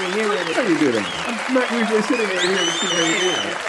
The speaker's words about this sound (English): Applause didn't come on. There it is.